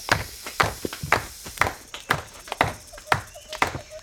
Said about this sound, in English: It is time to clap our hands, bang on the tree, and make as much noise as possible to see if we can make that snake go away. Can you help? Clap with me now.